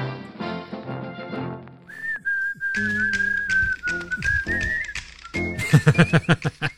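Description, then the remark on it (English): Someone whistles a steady, clear melody along with the short, punchy jingle of the 'Great Moments in NBA Straya Stat History' segment, the whistle riding on top for a few seconds before the music ends in loud rhythmic hits. “I just like whistling along to that.”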